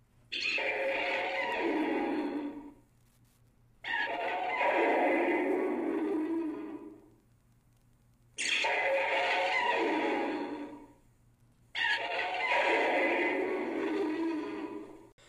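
The original film monster Rodan's screech: four long, loud, rasping shrieks, each lasting about three seconds, separated by brief silent pauses, with no talking.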